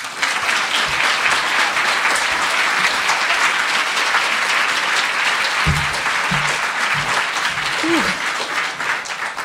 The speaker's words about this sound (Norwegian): Den neste timen skal hun ta for seg Atwoods klassiker, så gi henne en varm applaus.